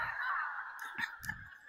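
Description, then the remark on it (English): A human voice mimics a duck's nasal quacking, one drawn-out honk followed by a few short, choppy squawks like a chicken, moderately loud, with no other talking. “There's chicken ducking and quacking over there.”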